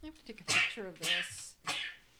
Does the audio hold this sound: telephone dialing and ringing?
no